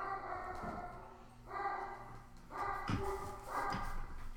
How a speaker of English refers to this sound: Wouldn't be a week of a podcast without your dogs barking. Apparently. Even though I'm in like the most distant room, the German Shepherd has a bark that resonates.